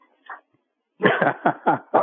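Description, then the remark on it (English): A dog barks in a quick, loud run of about five sharp yaps after a brief faint whimper-like sound, with no one talking. “I guess your dog doesn't like Michigan.”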